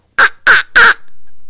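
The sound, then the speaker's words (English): Someone imitates a duck with three loud, raspy, nasal quacks in quick, even succession, followed by quiet. “Or I can also make a duck.”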